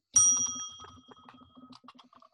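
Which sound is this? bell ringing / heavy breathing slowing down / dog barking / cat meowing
bell ringing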